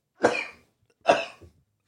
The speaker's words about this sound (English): It's once I like laughed too hard a few minutes ago, it just now the cough won't go away. Triggered it.